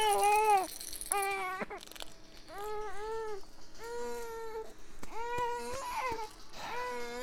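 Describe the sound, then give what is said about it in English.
A baby's toy elephant rattle shakes in short, scattered clicky bursts while an infant babbles and fusses loudly in drawn-out, wavering cries over it. “Look, here's your elephant.”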